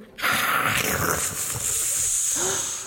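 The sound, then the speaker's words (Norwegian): A loud, sustained hiss like a snake, steady and close for nearly three seconds, with breathy, airy texture and no talking. “Åh, så det var sant det var en slange här.”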